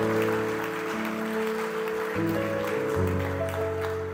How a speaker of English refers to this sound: Church, can we give Jesus a big round of applause for the truth of his word?